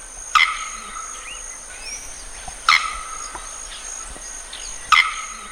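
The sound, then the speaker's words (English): Three sharp, explosively loud crack calls of a male bearded bellbird, a South American species, ring out about two seconds apart, each a brief ringing clang over a steady background hum of insects. “He's known for a sharp crack that's shockingly loud.”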